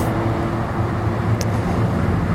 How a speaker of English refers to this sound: But at least now you can hear the traffic rushing behind us. We got two lanes rushing into downtown. One lane's going out to North Van, West Van.